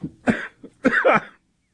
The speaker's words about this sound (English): I think you just passed a test on the coughing.